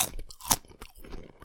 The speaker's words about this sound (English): Very similar crunch factor to the other thin chip. Obviously using the same potatoes.